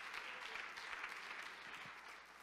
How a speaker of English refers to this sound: let's receive him with a hand clap of appreciation. Amen.